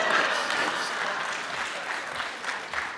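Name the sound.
round of applause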